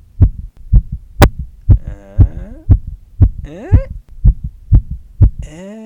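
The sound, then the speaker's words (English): A steady, loud video game heartbeat sound effect for a dialogue heartbeat bar, thumping about twice per second in low, booming pulses, while tonal game-like tones rise and warble over the top, ending in a sustained bright chime. “Ugh, heartbeat bar again.”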